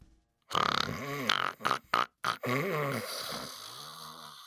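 Loud, raucous snoring performed by a voice, a husband snoring at 3 o'clock in the morning as his wife lies sleepless in the dark: a long gurgling snore, then a few short choppy snorts, then a drawn-out rumbling groan that gradually fades, with no talking.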